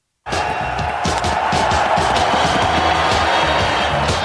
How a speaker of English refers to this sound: You already called the goal. Boom. Let's get into that crowd noise.